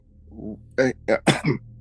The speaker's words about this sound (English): Sorry, I got a little cough on me.